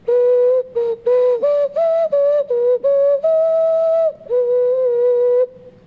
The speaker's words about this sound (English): used to call them whistles. But I have changed the name to flutes.